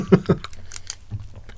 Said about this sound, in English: Yeah, you do actually have to chew on these a bit, don't you? Mm-hmm. They're a lot harder to chew than I remember.